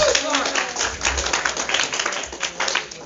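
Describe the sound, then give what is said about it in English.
A church audience claps in praise to God in a dense, steady burst of applause lasting about three seconds, with voices calling out faintly beneath the clapping. “Give God one last hand clap of praise.”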